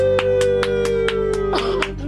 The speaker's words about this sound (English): There you go, Postman Pat. You got a one-person applaud there.